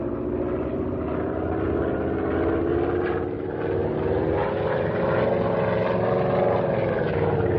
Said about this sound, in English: This ought to be far enough away to start in for a buzz. You watch them start to run when they see us coming out of the sky at them. Here goes!